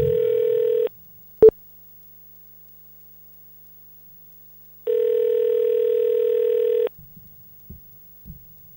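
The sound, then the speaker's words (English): A telephone line tone sounds twice as an outgoing call rings over a slightly glitchy phone connection, each steady buzzing burst lasting a second or two with a long silent gap between, a sharp click, then faint low thumps. “We're calling Andrew from the Tired and Brain Dead right now.”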